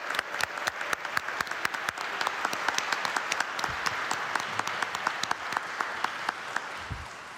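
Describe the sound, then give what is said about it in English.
A crowd at a church confirmation celebration breaks into a round of applause for the confirmation candidates, many hands clapping in a dense, steady patter with sharper individual claps popping out, sustained at an even level throughout. “So can we offer our candidates a round of applause, please?”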